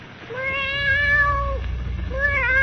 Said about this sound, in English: Pale and trembling, Perry White stares at the cat on Jimmy Olsen's bed, a cold black cat that, awakened by the opening of the door, rises and stretches, mewing plaintively, its green eyes glowing like emeralds.